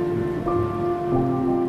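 Steady rain patters continuously beneath soft, sustained tones that shift pitch slightly a couple of times, a calm blended wash of sound with no voices.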